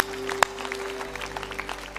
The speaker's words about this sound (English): Give the Lord a hand clap. Amen, everybody.